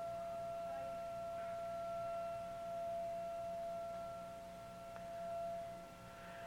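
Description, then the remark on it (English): A faint emergency siren of emergency crews heading out holds a steady, high wailing tone for several seconds over low background rumble, with no one speaking. “God, I don't know where the emergency crews are heading off to right now, but I hear the whistle.”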